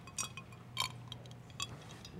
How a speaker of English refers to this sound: So when I think, and I'm sorry, I have to take a sip of water here.